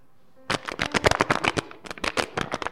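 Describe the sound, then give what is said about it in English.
An empty plastic water bottle is crinkled and squeezed, giving a quick run of sharp, irregular crackling bursts after a brief silent start, with no voices. “Somebody should bring me an empty bottle. Water bottle. Normal water bottle, empty one.”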